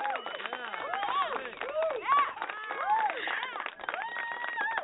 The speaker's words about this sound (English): I got to get a shorter clap module for that because I'm always talking over the claps, but you know I talk over people anyway, but I do listen.